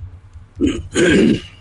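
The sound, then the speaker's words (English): A person makes a short, rough vocal screech in two bursts, a brief rasp followed by a longer harsh hiss-like cry, imitating an angry owl, fairly loud. “Can you make an angry owl noise?”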